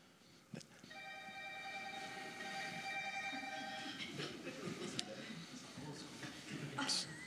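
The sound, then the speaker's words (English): A loud old telephone rings in one sustained, steady burst lasting a couple of seconds, over a noisy, rumbling background with faint voices. “I'm almost surprised a phone that old can be that loud,”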